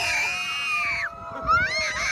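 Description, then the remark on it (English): A man on a roller coaster ride lets out a loud scream that holds a high pitch for about a second, breaks off, then rises again into a second shrill yell. “And he kind of screamed like that.”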